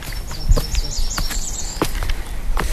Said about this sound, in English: The sun is out, so it's kind of shimmering through the leaves, and the birds and the wildlife are really loud right now. It's really neat.